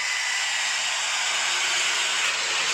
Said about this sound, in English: F-16s flying overhead as they rev up their engines. What a cool thing.